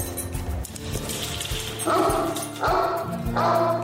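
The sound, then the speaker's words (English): A dog barks excitedly as its owner comes home, a quick series of loud yips and woofs, three bright bursts following one another over a steady background. “Nobody's as excited to see you as your best friend, your dog.”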